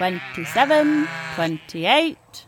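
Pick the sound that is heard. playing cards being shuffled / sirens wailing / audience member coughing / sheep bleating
sheep bleating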